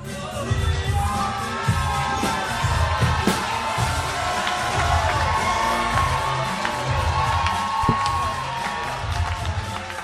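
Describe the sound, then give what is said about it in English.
An audience at a comedy show cheers and whoops loudly and steadily for ten seconds as the final comedian of the night is introduced, with scattered shouts and some clapping mixed into the dense crowd noise. “Make some noise for Billy Cox.”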